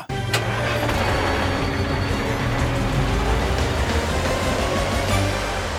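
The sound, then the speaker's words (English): A toy truck named Carl drives off through the streets to an amusement park with a steady, continuous motor whir and rumble that holds at an even, fairly loud level throughout, with no voices. “Carl drives through the streets and arrives at the amusement park.”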